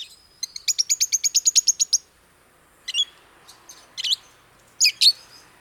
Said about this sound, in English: Another bird has also made Arizona home. Rosy-faced lovebirds.